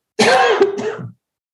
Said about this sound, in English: Excuse me, I have to turn my head and cough for 1 second.